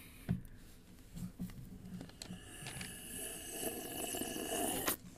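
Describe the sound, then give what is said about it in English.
Someone sips coffee: a few soft taps and clicks, then a long, airy slurp that builds and cuts off abruptly. No one speaks. “Let me take a sip.”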